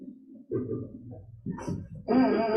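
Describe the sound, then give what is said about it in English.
A microphone stand squeaks as it is lowered: scraping mechanical creaks give way to a louder, sustained high-pitched squeal at the end. “And then it makes the squeaking sound.”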